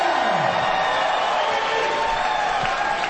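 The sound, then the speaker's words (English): A large crowd roars and cheers continuously at an amateur fight event, a loud dense wash of voices with scattered shouts and whoops rising above it. “Ladies and gentlemen, it's now time for Combat Zone 63. Make some noise if you're ready”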